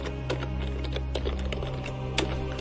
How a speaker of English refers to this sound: the sound of keystrokes.